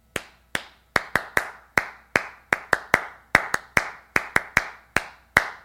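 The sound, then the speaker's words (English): A single person claps out the rhythmic pattern of a unity clap, about twenty sharp, loud claps in quick groupings with brief pauses between phrases, no voices. “I used to be a program director at a camp, and one of the first things I always loved to do was the unity clap. The unity clap goes something like this.”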